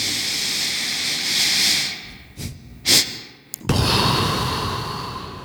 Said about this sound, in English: So you're not really holding your breath. You breathe in, suck in a little more through your nose, and then give a big gust out. But kind of, you can do it slow, too.